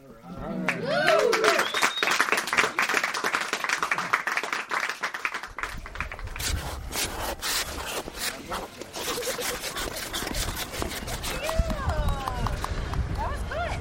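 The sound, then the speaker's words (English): Ambience of the outdoor ice skating rink known as the Frog Pond on Boston Common, in winter: continuous scraping and rasping of skate blades with quick sharp strokes, over a busy murmur of voices and occasional high calls from skaters. “recorded these wintry sounds at the skating rink on Boston Common known as the Frog Pond.”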